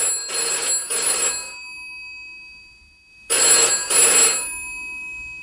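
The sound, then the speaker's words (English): A telephone in an office rings twice in a classic double-burst pattern, each ring a bright, trilling bell sound, with a pause of quiet between the two rings. No one speaks. “Apologies, that's actually the phone ringing in the office.”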